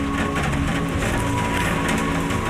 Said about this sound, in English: Man, it's raining cats and dogs out there. I don't know if you can hear it. I bet you can.